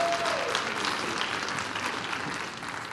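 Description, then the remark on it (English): A church audience claps to welcome a guest preacher, a dense wash of many hands that holds fairly loud throughout, then begins to thin and soften toward the end with no one speaking. “Let's give him another hand clap as he comes.”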